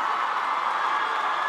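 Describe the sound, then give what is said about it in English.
A crowd of protesters cheers in the echoing halls of Oklahoma's state capitol after learning Julius Jones was granted clemency by Governor Kevin Stitt, a dense, steady roar of many voices that holds at an even, loud level without breaks for the whole moment. “Cheering echoed through the halls of Oklahoma's state capitol after protesters learned that Jones had been granted clemency by Governor Kevin Stitt.”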